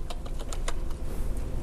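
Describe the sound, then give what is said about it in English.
Quick, irregular clicks of typing on a computer keyboard while working in an Excel spreadsheet, a burst of keystrokes that thins out toward the end over a low background hum, with no one talking. “If I try to not look at the keyboard and talk.”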